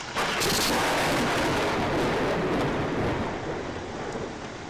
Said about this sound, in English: Everybody within 300 feet hears a very loud thunder.